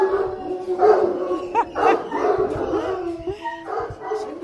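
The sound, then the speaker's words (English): A pack of bloodhounds at feeding time, bitches in one pen and dog hounds in the other, barks, yelps and howls together in a loud, overlapping chorus, with pitched whines rising over continuous baying. “Do you know, I just think they're so beautiful and noisy. So this is feeding time. Bitches in one, dog hounds in the other.”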